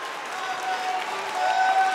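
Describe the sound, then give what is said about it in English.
A large audience claps and cheers in a dense, steady wash of applause, with scattered voices calling out and the noise swelling slightly louder toward the end. “If that's you, take the next 30 seconds and give them a praise and let everybody know you're in that crowd.”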